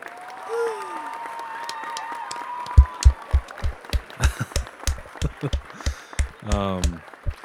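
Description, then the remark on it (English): A short round of applause: after a few seconds of quiet, whistly tones, steady sharp claps begin in a fairly even rhythm, with a brief voiced whoop near the end. “All right, everybody, a round of applause.”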